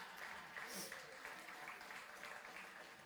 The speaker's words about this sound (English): All right, let's give them a clap. Let's bring them up.